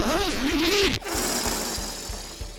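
A brief squeaky pitched tone gives way to a sharp click, then the zipper on a giant helium parade balloon, used for deflating it, is drawn steadily along with a raspy, evenly ticking texture, fairly loud.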